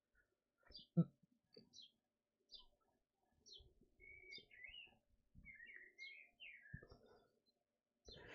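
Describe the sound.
Birds chirp loudly and repeatedly outside a window, short high tweets scattered throughout, with low pigeon-like cooing and some faint indistinct voice or room noise underneath.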